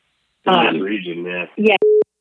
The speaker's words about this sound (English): Lost them again. I know. I wonder if it's our phone. I don't know what it is. Should I try shutting off the Wi-Fi? I don't think it's us.